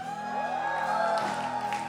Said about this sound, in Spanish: Y vas a dar un grito de júbilo.